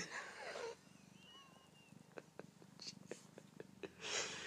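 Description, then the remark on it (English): A cat purrs steadily while being petted, a low rhythmic rumble running throughout, with one soft, drawn-out meow in the middle and bursts of rustling noise at the start and end. “I am petting a cat. He's meowing and purring and nuzzling and mauling me.”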